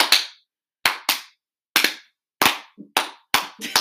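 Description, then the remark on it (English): A slow clap for Nathan: about eight sharp, crisp handclaps at an uneven, unhurried pace, each ringing out briefly before silence, with no voices. “Can we do a slow clap for Nathan?”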